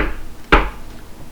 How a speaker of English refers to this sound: I think there's somebody at the door. That is what that knocking sounds like. Sounds very similar to a door, doesn't it?